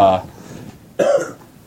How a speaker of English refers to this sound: Stop coughing. That's really loud.